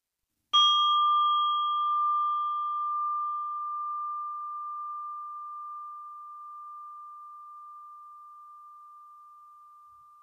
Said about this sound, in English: And I'm inviting the bell as an invitation for you to concentrate on your practice and specifically your breathing for the moment.